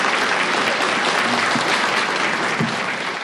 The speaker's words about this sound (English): Nice to have you here. Give him a round of applause, you guys.